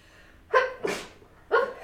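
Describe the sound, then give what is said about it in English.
A single loud sneeze: a sharp voiced intake, then a breathy burst, followed moments later by a short voiced exhale. No talking. “Wait, I have to sneeze.”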